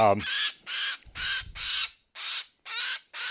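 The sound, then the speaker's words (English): A red-bellied woodpecker, held in hand while being processed for banding, gives a rapid series of about seven loud, harsh, raspy squawks in an even rhythm, with a brief voice at the very start and some low rustling midway. “Red bellies are notorious for this.”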